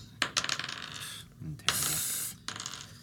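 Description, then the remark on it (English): Dice clatter across a hard tabletop in a burst of quick clicks, rolled for a history check in a game, then tumble in a longer rattling roll before coming to rest. “I rolled garbage.”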